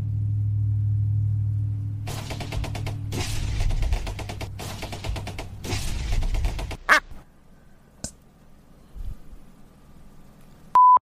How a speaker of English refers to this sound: Let's wait for the big, ugly, loud, obnoxious fucking truck to go by.